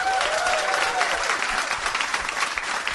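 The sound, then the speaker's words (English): A burst of audience applause, dense and steady clapping from many hands at a fairly loud, even level throughout, with a few faint voices and a brief whistle-like tone mixed in, from audience members who have seen the 1988 film Die Hard. “Give me a round of applause if you have seen Die Hard.”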